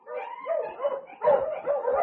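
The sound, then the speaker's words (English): A dog barks and yelps in a quick, uneven series of fairly loud cries that run together with little pause over a couple of seconds, with no talking, on a sled trail about 10 miles from Dawson. “About 10 miles from town, I was mushing along the trail, and suddenly I heard a dog.”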